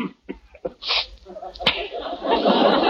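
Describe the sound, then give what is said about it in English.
A few short, catching breaths lead into a loud, hissing sneeze, followed by a sharp smack-like burst and a stretch of rough, noisy commotion. “God bless you.”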